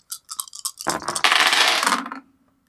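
Dice clatter on a table: a handful of light, quick clicks, then a dense, bright rattle that rolls on for over a second before tapering off into quiet. No one speaks.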